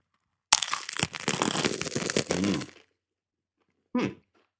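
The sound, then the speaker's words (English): A crunchy bite into a small naan folded in half like a little taco, with a glob of butter chicken pushed into the middle, gives a loud, crackly crunch lasting a couple of seconds, followed after a pause by one shorter crunch. No one speaks. “Get some of that crunch on the ASMR.”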